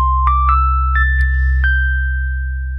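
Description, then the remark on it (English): A short bright segment chime, played after a witty comment: about five quick, mostly rising notes whose ringing tones overlap and sustain, fading out over a low, steady hum, with no talking. “We do an intro, and then I play the segment chime when I think I've made a witty comment.”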